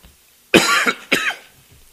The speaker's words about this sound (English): It happens suddenly, and if I ever start coughing, I won't quit.